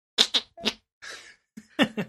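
An armpit fart: a series of about six short, wet, squelchy bursts in an uneven rhythm, with one longer breathy, hissing stretch in the middle and no talking.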